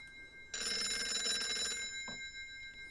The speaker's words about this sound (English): Oh, we have a phone call. Oh, who's calling us?